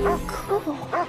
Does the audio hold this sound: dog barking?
yes